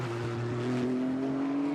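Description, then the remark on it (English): The green and white number 66 JG Wentworth Gradient Racing Acura NSX race car of Sheena Monk drones loudly and steadily on the streets of Long Beach, its pitch shifting as it heads down to turn one into the fountain, with no talking. “Down to turn one, the green and white number 66 of Sheena Monk heads into the fountain in the JG Wentworth number 66 Gradient Racing Acura NSX.”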